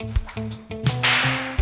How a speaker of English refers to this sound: That's a good whip. It's a very good whip.